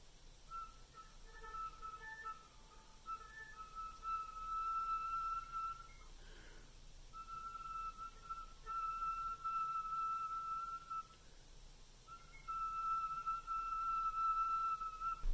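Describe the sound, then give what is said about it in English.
Very soft, thin whistle tones played on a flute with super slow air: three long, steady held notes with brief pauses between them, pure and airy, played alone without any talking. “and then work on whistle tones. Whistle tones are so good for us as flutists.”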